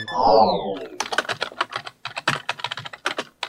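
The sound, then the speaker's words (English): Rapid, irregular clicks of typing on a computer keyboard, fairly loud, following a brief descending whoosh at the start; no voices. “a new device out of the Georgia Institute of Technology is taking typing in a smart direction”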